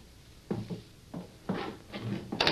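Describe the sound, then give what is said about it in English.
A door is opened with a short series of muffled wooden clunks and rattles, like a latch and hinges being worked, fairly quiet, with no voices. “Go on. Open the door.”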